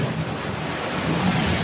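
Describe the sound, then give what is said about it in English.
Sea waves of the Bay of Naples at Pompeii recede from the shore as earthquakes push the sea away, in a steady, full rush of surf, with a wind-like hiss throughout and a slight swell toward the end. No voices are heard. “Surviving Pompeians tell tales of the sea retreating as if the earthquakes were literally pushing the sea away.”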